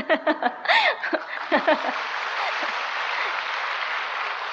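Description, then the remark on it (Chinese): A burst of audience laughter with several voices chuckling, quickly giving way to steady, sustained applause from a crowd that fills the rest of the moment, given to a speaker after a few minutes of his talk. “我讲了几分钟就有鼓掌意思而已，我很羡慕他。”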